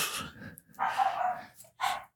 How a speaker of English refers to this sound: Stupid dog.